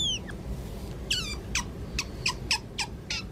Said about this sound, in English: So, Bree, cut in here like what otters sound like.